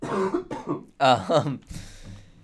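A few harsh, throaty coughs in quick bursts, fairly loud, with a rough throat-clearing quality and no talking around them.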